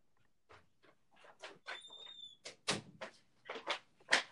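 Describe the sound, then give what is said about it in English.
A door being opened: a series of clunks and rattles from the handle and frame, with a brief high hinge squeak partway through, and no voices. “I got to get the door real quick.”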